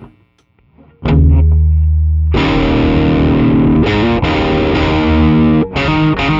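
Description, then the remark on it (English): A heavily overdriven, distorted electric guitar, played through an overdrive pedal stacked into a Riot distortion pedal, plays loud, saturated chords, starting with a low ringing note and then chugging through gritty, sustained power chords with brief breaks between them. “But one thing that I think is kind of cool, one of my favorite things to do is to stack drive into a distortion to like kind of like push that a little bit more.”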